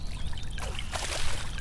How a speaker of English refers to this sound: He watched as the sparrow dived right in, dipping in and out and splashing about.